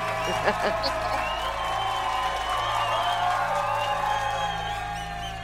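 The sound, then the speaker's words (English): Several voices cheer and whoop together for a few seconds, a steady, fairly loud burst of excited shouting with high-pitched calls rising above the mix. “Let's give her a round of applause, girls.”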